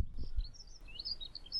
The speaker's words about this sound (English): Just heard a bit of a dunnock singing now, I don't know if you picked it up on the microphone.